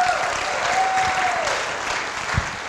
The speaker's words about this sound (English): It is now finally Confirmation Sunday. And so, yeah, that's right. You can clap for them. Go right ahead.